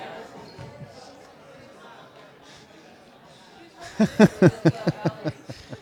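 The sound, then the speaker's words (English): Murmuring crowd noise gives way to a basketball bouncing on a hard court before a free throw, about seven quick, evenly spaced dribbles that sound loud, ringing out over the background chatter. “With a free throw.”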